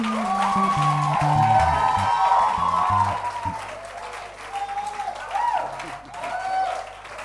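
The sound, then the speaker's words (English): A church audience welcoming their bishop breaks into loud, sustained applause, dense clapping with cheering voices and a low organ-like tone underneath, swelling early then easing slightly while continuing throughout. “A bigger hand clap.”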